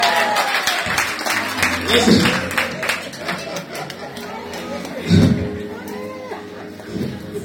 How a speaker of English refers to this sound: Wow, every lady clap hands for quality time.